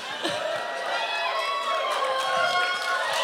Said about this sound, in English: this crowd is so hot tonight, I don't think we have to do a show. They can just cheer for 2 straight hours.